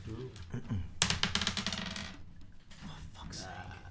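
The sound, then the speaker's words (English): Dice tumble across a table in a rapid burst of hard clicks and clatters for about a second, coming up a 2, with voices talking before and after. “Fucking dice.”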